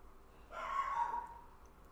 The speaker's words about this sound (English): Maybe it's heard my dog is trying to eat someone. I'm not really sure what's going on there.